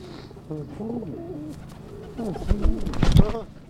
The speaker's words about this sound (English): Yeah, teaching people about birds, I'm feeding them, you know. Giving people a different perspective about them.